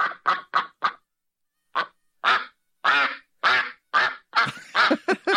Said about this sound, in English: 1 hour of duck sounds. I'm here on YouTube. 1 hour of duck sounds.